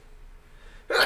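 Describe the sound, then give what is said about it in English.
A single abrupt sneeze bursts out, sharp and loud, right at the end after a stretch of near silence. “Bless you.”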